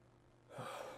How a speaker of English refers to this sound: Sorry, I'm yawning in real life because I'm exhausted.